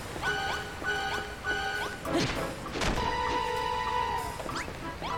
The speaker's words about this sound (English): So left click. Alright, left click. We're punching driftwood and turning it into wooden blocks.